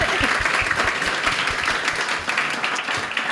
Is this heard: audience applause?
yes